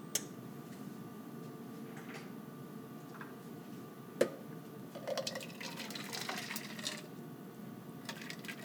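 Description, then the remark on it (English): Water just boiled in a kettle, 1/3 cup plus 1 tablespoon, pours briefly into a cornmeal batter mixed with salt and butter, a soft trickle lasting a couple of seconds amid scattered light ticks and clinks against a quiet background hum. “You don't even need to melt the butter because to this, I'm going to add 1/3 cup plus 1 tablespoon of water that I've just boiled on my kettle.”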